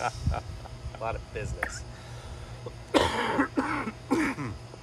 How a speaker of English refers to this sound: A lot of coughing going on today. I'm going to have to edit all this coughing out.